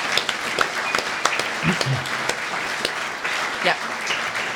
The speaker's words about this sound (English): So let's give everybody a round of applause who's making it happen.